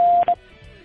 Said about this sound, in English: Please record your message at the beep. When done, hit the pound key so I can play it back to you for your approval.